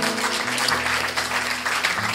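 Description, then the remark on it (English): A church audience at a morning service claps for the Lord steadily, many hands producing a dense, continuous wash of applause, with a low sustained organ or keyboard tone humming underneath throughout. “Go on, give the Lord a big clap this morning.”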